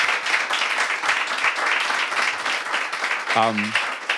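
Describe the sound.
Sustained audience applause for a panel at Offsite Concept Space, a coffee shop, dense overlapping clapping at steady loudness throughout, with a brief voice cutting in near the end.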